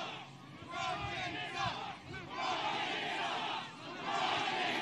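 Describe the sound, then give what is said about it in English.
A large rally crowd somewhere in Ohio cheers and shouts in a dense, sustained roar, with mixed voices swelling and dipping briefly before rising loudly again. “What a crowd.”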